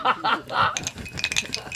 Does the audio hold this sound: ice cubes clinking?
yes